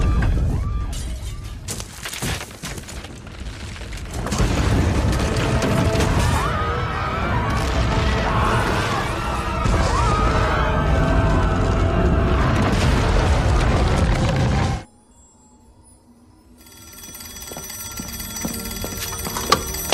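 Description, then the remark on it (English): A massive nuclear blast erupts into a loud, sustained roaring rumble that churns for over ten seconds, then cuts abruptly to a quieter stretch with faint ringing, alarm-like tones. “Nuclear warhead.”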